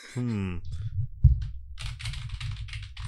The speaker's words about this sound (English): I just pointed my microphone at my keyboard for comedic effect. Okay. if that didn't come across, just add some typing sounds.